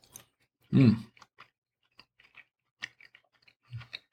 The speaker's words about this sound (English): Try it with this. Got to chew it up really good.